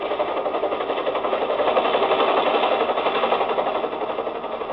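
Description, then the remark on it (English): A helicopter's rotors thrum in a steady, rapid beat over a dense engine whine, swelling slightly louder and then holding even throughout, with no voices. The helicopter is coming into San Borja at night and landing on the other side of the mines. “The fields in San Borja make it tough for a plane, but for a helicopter, that's another thing.”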